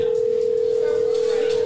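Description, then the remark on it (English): A steady telephone ringback tone, heard while calling a man at home, hums at a single pitch, loud and unbroken for the whole moment, with faint background murmur underneath. “so we're going to grab him on the phone and see what we'll bring him on the conversation.”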